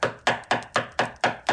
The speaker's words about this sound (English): Oh my goodness. Well, there's another knock at the door. You're going to get the door this time, because I don't know who's going to be there.